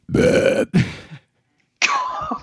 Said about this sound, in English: wanted a burp in the middle of it too